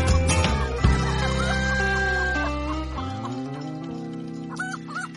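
A loud rooster crows once in a long, strained harmonic call lasting a few seconds, followed by softer clucking sounds near the end. No one speaks.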